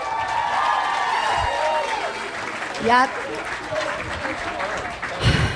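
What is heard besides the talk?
audience applause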